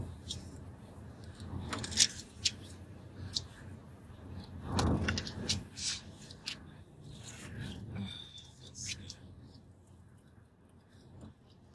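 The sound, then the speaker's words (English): Papery riffling and soft slaps come in irregular bursts as a deck of oracle cards gets shuffled for a romantic oracle reading for Virgo, with a brief louder flurry midway and quieter handling toward the end. “I gotta shuffle these really good.”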